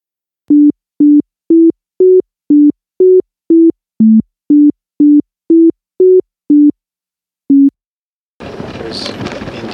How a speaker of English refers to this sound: The next tune is identical to the one you just heard, except that now the tones are all in the same octave. You should recognize this tune without any problem.